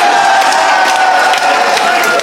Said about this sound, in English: What does that mean? How did that get a round of applause?